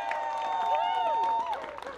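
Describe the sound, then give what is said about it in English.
An audience claps steadily in a dense, even patter while a few voices let out rising and falling whoops over it, one long whoop holding high before sliding down near the end. “We got some whoops, we went, all right, there we go.”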